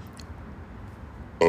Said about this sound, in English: Excuse me. I'm sorry to do that, ladies and gentlemen. I had a burp.